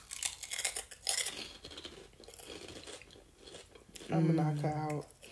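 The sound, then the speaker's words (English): Loud crunching as a crisp snack is bitten and chewed, a dense burst of brittle cracks that fades into softer chewing, followed by a short voiced sound near the end. “But I still got one in my hand. Listen to the crunch, y'all.”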